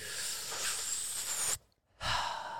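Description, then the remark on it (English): A long, airy inhale, then a brief pause before a breathy exhale begins, a deep belly breath taken slowly with no talking. “Take 3 deep breaths, breathing into the belly, taking in as much air as you can, and releasing it.”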